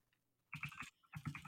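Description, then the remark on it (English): Two quick bursts of rapid typing on a computer keyboard, a flurry of clacky keystrokes separated by a brief pause, with no one talking. “I apologize for my keyboard.”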